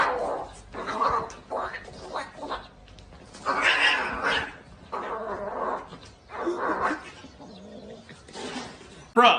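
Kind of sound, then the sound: vocal imitation, person imitating a cat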